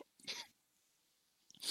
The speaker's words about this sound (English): Well, that sneeze is on there now. Oh, well. I'm not editing it out.